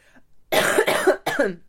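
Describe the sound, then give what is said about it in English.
Three harsh, barking coughs in quick succession, loud, with a rough, croupy rasp and no talking around them. “Seriously, you guys, this is like this cough is so nasty. I'm like a croupy 5-year-old.”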